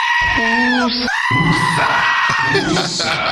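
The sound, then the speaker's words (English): A loud goat bleat with a wavering, scream-like cry, repeated in quick succession as several strained, nasal calls over about three seconds, with no other sounds. “Yeah, we got a goat woosa for you.”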